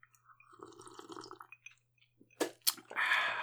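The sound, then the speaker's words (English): Someone slurps an Old Fashioned cocktail made with bourbon: a wet, gurgling sip, then a couple of sharp sucking bursts and a final sustained airy slurp. No one speaks. “So slurpy.”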